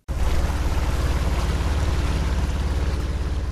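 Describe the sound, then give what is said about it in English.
A tour boat engine drones steadily, its low rhythmic chugging pulsing beneath rushing wind and water noise, with no voices present, as the boat travels along the Sanya River through the Sanya River Mangrove Reserve in China. “We are now taking a tour of the Sanya River to see mangrove trees close up on both banks of the southward river running through the city center.”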